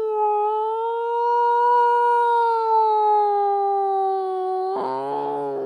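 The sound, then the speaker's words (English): A voice imitates an old-fashioned ambulance siren with one long, loud, sustained wail that swells slightly and slowly sinks, ending in a rough, buzzy break. “And they sent an ambulance down. And those days, there was no whoa, whoa. Instead, it was.”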